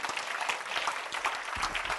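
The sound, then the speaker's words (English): A church audience claps their hands for Jesus during a sermon, a dense, steady patter of many overlapping claps sustained throughout with no talking. “So now you can clap your hands for Jesus.”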